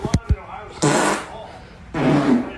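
Two quick, low popping bursts, then a pair of longer, raspy, sputtering farts, each lasting about half a second, loud with brief pauses between them.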